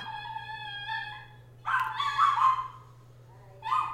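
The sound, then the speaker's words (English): A neighbor's dog lets out a long, high whimpering whine, then breaks into a loud burst of yappy barking and, after a short pause, one more bark, with a steady low hum beneath. “Our neighbor's dog is very excited about Spider-Man.”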